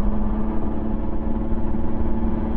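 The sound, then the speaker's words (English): The engines of the cargo ship Kipper drone steadily, a dense, deep, continuous low rumble with a faint tonal whine layered on top and no pauses or voices. “Kill your engines and stay it down.”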